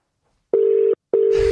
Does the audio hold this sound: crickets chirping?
no